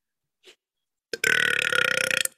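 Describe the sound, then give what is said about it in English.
A single long, loud burp after drinking La Croix pamplemousse-flavored sparkling water rumbles for about a second, rough and sustained, after a brief faint sound and a short pause. No one speaks. “We will see y'all next time on Burpity Burps and Video Games. Brought to you by La Croix”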